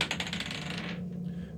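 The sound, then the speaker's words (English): Dice rolled across a hard surface for a survival check, coming up 21: a quick, soft burst of rapid clattering clicks lasting under a second, then stopping abruptly and leaving a low, steady background hum. “Somebody roll a quick survival check for me.”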